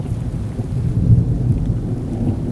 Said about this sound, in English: I fear thunderstorms because I cannot control them.